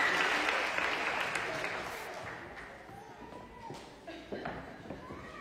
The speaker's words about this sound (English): Would you give the Lord a clap offering for all these beautiful babies? Thanks, guys.